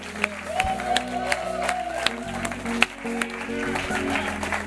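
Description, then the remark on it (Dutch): An audience applauds the pastors present, steadily, with dense clapping, scattered sharper claps and a few whoops, while sustained low musical tones hum underneath throughout. “I'd like you to put your hands together if your pastors here.”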